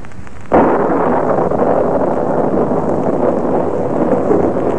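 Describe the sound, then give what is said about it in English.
Heavy rain pours down with gusting wind, a dense, steady roar of hiss and rumble that cuts in abruptly after a brief quieter moment and stays loud throughout, with no voices. “Raining again. Oh, what a climate.”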